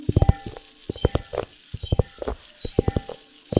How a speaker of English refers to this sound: This is a mini rain stick.